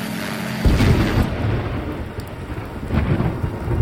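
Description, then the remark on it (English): A thunderstorm: a deep rumble of thunder swells in after a moment and rolls on under steady, hissing rain, loud throughout, with no voices. “He turned up the volume, shut his lights off, and as he crawled into his bed, it began to storm.”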